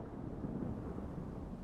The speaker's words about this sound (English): You hear thunder, and you feel the wind, so.